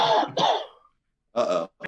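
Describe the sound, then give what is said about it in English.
A loud fit of coughing over a Zoom call after failing to mute: two rough coughs in quick succession, a short pause, then another harsh cough and a brief final one. No one is talking. “I hit mute and then cough, but then mute. So you all heard that.”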